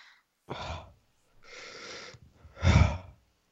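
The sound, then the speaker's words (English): Three heavy, breathy exhalations into the microphone, each about half a second to a second long, the last one loudest and most forceful, with short pauses between them and no talking. “Now you're heavy breathing into the microphone.”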